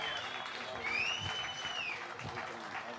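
A crowd claps steadily, a dense wash of hands filling the whole moment, with a sharp rising-and-falling whistle cutting through in the middle and excited cheering mixed in.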